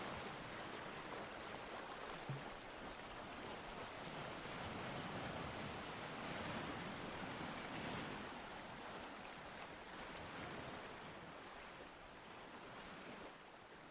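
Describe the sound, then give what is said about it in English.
Steady ocean surf washes in and out, a broad continuous rush of breaking waves with gentle swells in loudness around the middle, with no voices. “You know, and for us is, when the wave coming in, you just draw in that peace that God has there for, you know, for those creatures and for us.”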